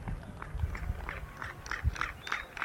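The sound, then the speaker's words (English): People clap hands in a steady rhythm in the middle of a stone square between altars, each clap answered by an odd, chirping reverberating echo that sounds almost like a quacking duck, with faint background murmur. “That is people clapping in the middle of this square between all these altars”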